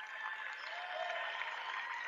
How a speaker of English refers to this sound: And both sets of fans will applaud the young men that represented their high schools pretty well here. Great effort all the way around.